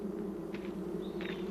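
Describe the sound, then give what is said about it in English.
A dense, steady drone of many African honey bees buzzing together in hives fitted with queen excluders at the University of Sao Paulo, a continuous hum with faint brief higher flickers passing over it, and no voices. “The African bees were prevented from escaping by queen excluders, metal grills that allow workers to pass through but keep the larger queen inside the hive.”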